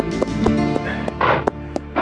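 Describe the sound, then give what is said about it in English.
Steady, evenly spaced hoofbeats of a big strawberry roan horse heading toward a livery stable clip-clop at a walking pace, each knock crisp, set against a dense, sustained musical bed. “of square meals appealed to Chick as he headed his big strawberry roan toward the livery.”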